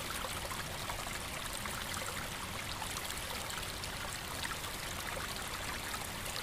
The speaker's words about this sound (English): The little stream in front of the log trickles and bubbles away, creating a little percussive sound, so delicate, it with its almost musical intonality.